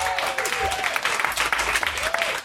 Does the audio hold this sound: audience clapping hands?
yes